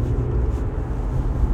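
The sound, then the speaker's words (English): A steady, low rumble of road noise from heavy traffic heard from inside a car stuck in its lane, even and continuous with no voices or distinct events. “This traffic is goofy today.”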